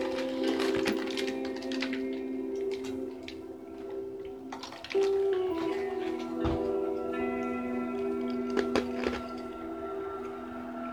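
Ice cubes clink against a glass of ice water in a handful of sharp, irregular taps, some louder than others, over a steady low hum with no one talking.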